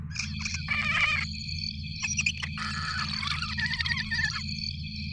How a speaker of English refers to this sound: What the hell is that? Analyze the audio. Hang on. Sounds like giant crickets.